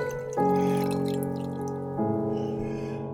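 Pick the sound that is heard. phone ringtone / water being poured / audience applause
water being poured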